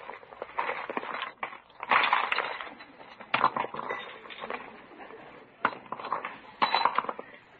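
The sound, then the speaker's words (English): Small objects such as a lipstick, compact, house keys, pillbox, fountain pen and flashlight rattle, clink and rustle as they are tipped and pulled out of a purse while changing purses, in uneven bursts of clatter with brief pauses between, fairly loud and without any voices. “Well, I just have to take time to change my purse.”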